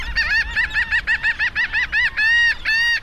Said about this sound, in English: Lang Elliott recorded this colony of laughing gulls on the southern coast of Maine. They were perched atop an old ship mast that washed ashore on Eastern Egg Rock. The birds, obviously, thought it was a pretty funny sight.